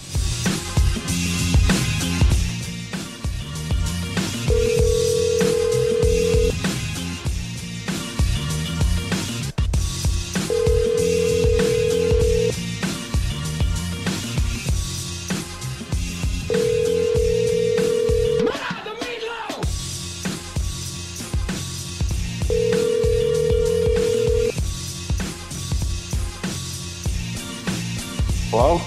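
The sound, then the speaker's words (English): A phone line rings four times at steady intervals with no answer, each ringback tone clear and even, while busy background music plays throughout. “He's not picking up.”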